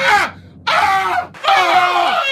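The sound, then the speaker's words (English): Loud, strained screaming from several voices at once, the cacophony heard when the Philadelphia Eagles are picked to win a playoff game, arriving in three bursts separated by brief gaps, harsh with no talking. “If you pick the Eagles to win in a playoff game, all you get is a cacophony of screaming behind you.”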